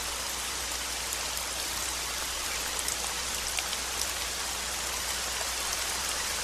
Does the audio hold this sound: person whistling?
no